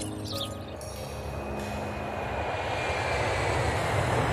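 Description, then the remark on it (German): The four radial engines of a Lockheed Super Constellation propeller airliner drone in a steady, dense roar that slowly swells louder over a few seconds, continuous with no voices. “Und sie gilt doch als das legendäre Langstreckenflugzeug aus der Vor-Düsenjet-Ära. Die Lockheed Super-Constellation.”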